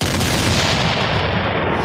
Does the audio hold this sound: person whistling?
no